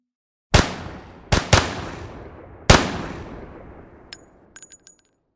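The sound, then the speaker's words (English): Four loud gunshots crack out at irregular intervals at a mine entrance, fired during a clash between an angry mob of striking union members and strikebreakers and guards. Each shot leaves a long echoing decay, followed by a few brief, thin metallic pings near the end. No one speaks. “It didn't take long before shots were fired.”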